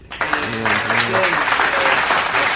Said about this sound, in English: Can we get another round of applause before we end this?